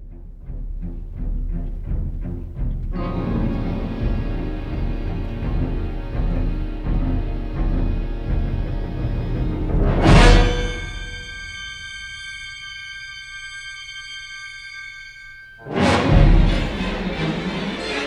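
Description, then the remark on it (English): Frantic, dissonant orchestral music for a shark attack: violins race through fast atonal ascending and descending scales, punctuated by heavy bass drum banging and syncopated brass flares, then a loud crash leaves a sustained high shrill violin chord before another booming hit. “The violins break into a fast sequence of atonal ascending and descending scales with the bass drum banging and the brass interjecting with syncopated flares.”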